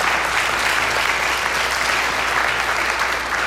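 An audience applauds steadily, a dense, even wash of many hands clapping at full strength throughout, with no voices standing out.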